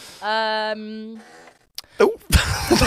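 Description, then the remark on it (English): A seat in a studio squeaks with a low, buzzy, fart-like tone that holds steady for about a second and then fades, followed by short bursts of voices. “I can reassure the listeners, she didn't just fart then in the studio. It was the seat.”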